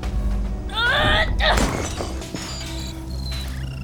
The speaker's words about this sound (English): Board break.